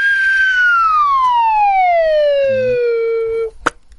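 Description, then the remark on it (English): A slide whistle plays one long, smooth descending glide, its loud pitch dropping steadily for about three seconds before stopping, followed by a brief sharp pop. “Slide whistle. Okay. It goes like this.”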